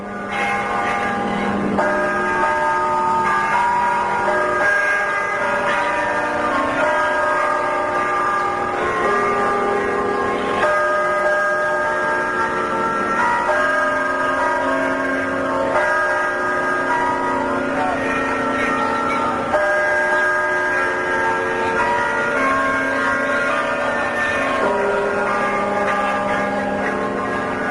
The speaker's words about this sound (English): high above the campus, a lonely-sounding bell rings out the noon hour. But it's soon joined by the other bells in the carillon of the campanile, Jane Sather Tower.